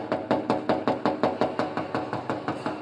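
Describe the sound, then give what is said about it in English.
Rapid, insistent knocking on a house door: a loud, steady barrage of about a dozen hard raps in under three seconds, with no voices. “Anyone who knocks like this, I am pretending that you're welcome because you're not.”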